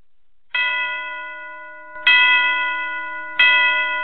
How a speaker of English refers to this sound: Let me play the bells again, y'all.